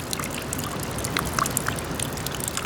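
Rainwater trickles and drips steadily off the roof of a snack bar onto snow on the ground below, a soft continuous dribble with scattered brighter drops landing, slowly melting the snow and creating puddles; no voices present.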